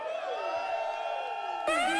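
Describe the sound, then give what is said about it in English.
A live show audience cheers and whoops loudly when asked to make some noise, a steady, dense roar of many voices, with rising and falling shouts, swelling slightly near the end. “everyone in attendance is a judge. If you've seen Fresh Produce before, make some noise.”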